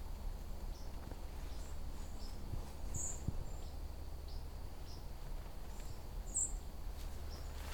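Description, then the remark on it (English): A song sparrow gives a few sharp, high chip notes, spaced irregularly and fairly faint, over a steady low outdoor rumble with no one talking. “This is a pretty typical song sparrow call.”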